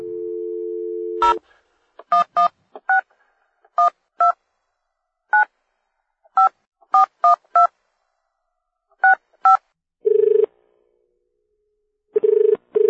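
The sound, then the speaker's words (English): Telephone dialing tones of a call to Australia: a steady dial tone gives way to a quick series of short two-note keypad beeps in uneven bursts, followed by brief ringback tones, clear with no talking. “Let's give Michael Shaloub from Australia a call on the phone right now.”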